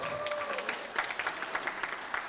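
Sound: audience applause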